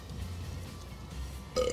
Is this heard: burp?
yes